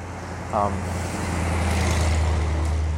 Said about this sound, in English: I'm walking on these quiet streets in Roseburg, and it's pretty jarring, by the way, when a huge truck goes by.